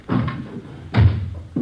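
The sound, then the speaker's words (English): A door is pushed open, with a few heavy wooden bumps and knocks, the loudest thud in the middle and another short knock at the end. “Door's open. Let's have a look.”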